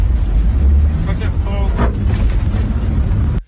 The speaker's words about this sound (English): So this is taken inside a fire truck on the way to a fire.